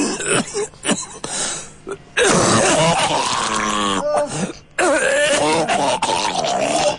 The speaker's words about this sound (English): No, you need to come straight away. Yeah? Your cough is very, very bad.